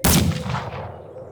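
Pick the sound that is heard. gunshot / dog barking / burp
gunshot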